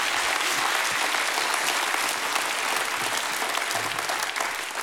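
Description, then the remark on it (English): A gathering of people gives God a hand clap and a shout during a sermon, breaking into sustained, dense applause, loud and steady throughout, with scattered cheers and shouts mixed into the clapping. “Give God a hand clap and a shout, please.”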